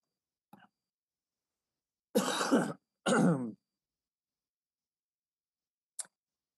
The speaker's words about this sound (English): Yeah, sorry if I cough some. I'm still recovering from my sickness, as many of you prayed for.